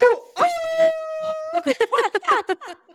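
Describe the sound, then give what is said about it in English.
A dog lets out one long, steady howl, holding a single pitch for about a second before a person starts talking over the quieter end. “And so I have two dogs in my lap. I have one behind me.”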